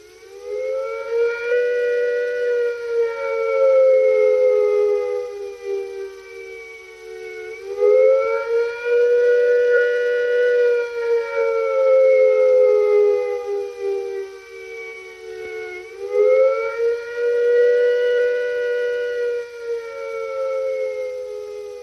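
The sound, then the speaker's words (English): An air-raid attack warning siren from a British public information film, warning of an expected nuclear attack, wails loudly and steadily, its pitch rising and falling in slow, repeating cycles of about eight seconds, with no voices present. “If an attack is expected, the sirens will sound a rising and falling note like this.”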